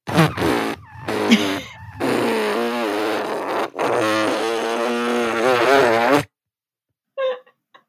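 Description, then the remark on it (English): A voice imitates a long, drawn-out fart from Coco the dog, with wet, buzzing sputters that rise and fall in pitch for several seconds, cut off abruptly, followed by a brief faint bubbly bit. “She'll sit on the back of my couch while I'm watching TV and just really let it rip and then act like I was doing it.”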